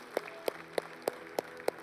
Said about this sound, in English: Let's give God a round of applause today, can we? Thank you, Jesus.